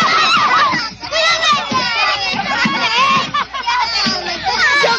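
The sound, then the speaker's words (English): A crowd brawling with truncheons: many voices yell and shout over one another, loud, with scattered dull thuds of blows beneath the continuous uproar. “They're all hitting each other with truncheons.”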